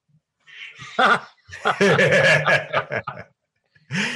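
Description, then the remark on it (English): A cat meows loudly, a short call followed by a long, drawn-out wavering yowl with a few choppy bursts, then another meow starting after a brief pause. “Why don't you, as our cat chimes in, why don't you tell everyone your story?”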